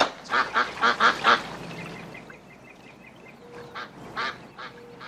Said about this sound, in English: the ducks are over here.